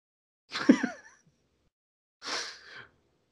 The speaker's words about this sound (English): Sorry, guys. I really am sorry. I got this cough that won't fucking quit.